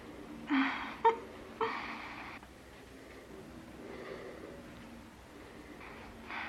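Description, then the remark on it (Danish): A woman being strangled with a telephone cord chokes and gasps in two or three harsh, raspy bursts with a sharp knock between them, followed by a quieter stretch of faint, strained breathing. “kvæle hende med telefonledningen”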